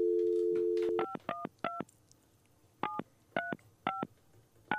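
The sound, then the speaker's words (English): A steady dial tone hums briefly, then gives way to a quick series of touch-tone keypad beeps as someone dials to make a phone call, about nine short dual-tone presses in uneven bursts, clear with no talking. “So we gotta make a phone call, too.”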